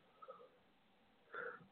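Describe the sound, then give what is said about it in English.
A single muffled cough near the end, short and fairly soft, preceded by a faint breathy sound; no one speaks. “I'm sorry there, guys. I just coughed, in case you didn't know.”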